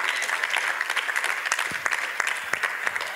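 A church audience claps for God during a sermon, a dense wash of many hands with sharper individual claps popping out, sustained and fairly loud throughout with no voices.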